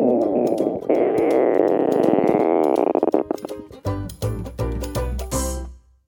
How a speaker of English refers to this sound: That rumbling or growling sound that you hear is air moving around your intestines.